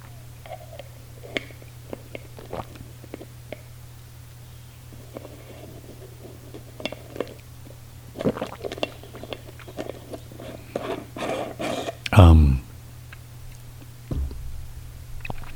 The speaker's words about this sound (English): But I'm real, little sip of orange juice, if I may. I don't think I'll make enough noise to turn off my microphone.